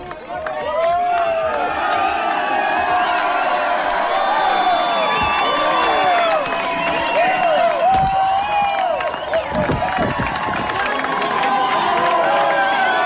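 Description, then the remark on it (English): A huge crowd outside a hurling club after a hurling match win cheers and shouts nonstop, a loud, dense roar of many voices with whoops and scattered clapping, continuing unbroken for the whole stretch. “So this is a video. Massive crowds down outside the club.”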